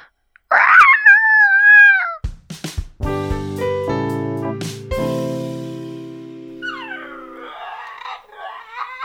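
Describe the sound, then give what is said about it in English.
Tessie the dog gives an excited, high-pitched whining howl over her new BarkBox of toys and treats, then a few sharp clatters and sustained ringing tones follow, ending with softer wavering whines. “I love how excited our dog Tessie is when she gets new toys and treats”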